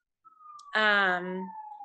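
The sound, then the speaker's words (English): A steady, slightly falling emergency vehicle siren wails throughout in New York City, briefly overlapped by a short burst of a person's voice in the middle. “So I in New York City, and ambulances and police all at the time. We live right next to a fire department.”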